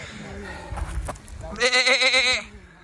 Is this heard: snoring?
no